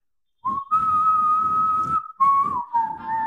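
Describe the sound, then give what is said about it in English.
A person whistles the theme from the film For a Few Dollars More, a slow, drawn-out western tune, holding long steady notes with brief breaks and a breathy, airy edge, fairly loud. “A Few Dollars More is the whistling theme that plays in between the cinematic. It goes.”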